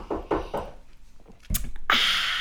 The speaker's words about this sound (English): Someone's just knocked on our window.